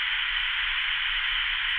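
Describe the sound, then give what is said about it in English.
A steady, unbroken hiss of white noise static, loud and continuous for the whole stretch, with a faint low rumble beneath and no voices. “As had the verdict gone the other way, we had this whole thing planned, where we were just going to file 6 minutes of white noise static.”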